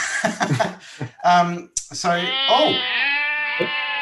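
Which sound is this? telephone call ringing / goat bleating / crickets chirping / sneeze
goat bleating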